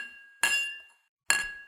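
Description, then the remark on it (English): Two bright clinks of raised glasses in a toast, about a second apart, each ringing briefly with a clear tone before fading. Crisp, with no voices. “I smile, raise my glass, and acknowledge the winner's toast.”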